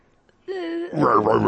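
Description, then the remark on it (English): After a brief silence, a person in a studio makes a loud vocal growl in imitation of a tiger, starting as a steady hum and swelling into a rough, rumbling roar. “And yeah, so I've got a live Tiger in the studio with me today. Quite scary, I must say.”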